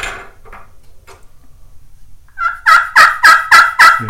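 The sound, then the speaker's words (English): A few soft, short clucks come first, then a loud, rapid series of raspy turkey yelps from a friction pot call played with a striker, about six evenly spaced notes, clear with no talking. “I'll yelp and cluck on them so you can see hear the difference.”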